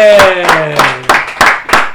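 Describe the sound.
Steady, evenly spaced hand claps, about six sharp loud strikes in two seconds, over a held, slowly falling voice-like tone, like a short round of applause with a cheer.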